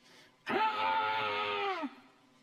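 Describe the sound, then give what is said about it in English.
A hungry newborn lets out one loud, drawn-out cry lasting about a second and a half, its strained, steady pitch sagging at the very end before cutting off. No one speaks. “What I don't miss is when they're hungry. And you get to hear that cry.”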